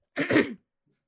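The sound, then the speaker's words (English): A female dog gives a single short, harsh cough, a fairly loud burst lasting under half a second, followed by silence. “My dog just coughed.”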